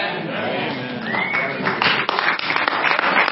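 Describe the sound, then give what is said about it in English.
An audience breaks into clapping after a brief murmur of voices, the applause swelling into a dense, steady patter of many hands that carries through to the end. “Yeah, y'all just clapping because I said it.”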